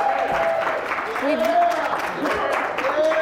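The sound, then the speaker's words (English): A crowd applauds loudly and steadily for about three seconds in a round of applause for Voice America during a live Voice America broadcast, a dense wash of clapping with a few rising and falling whoops or whistles cutting through. “So big round of applause for Voice America over here.”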